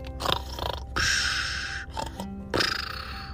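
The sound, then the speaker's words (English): A sleeping cheetah snores in a cave in a few rough, rasping breaths, fairly loud, with one long drawn-out inhale in the middle and shorter snorting bursts around it. “Yeah, sometimes when cheetahs are sleeping, they snore.”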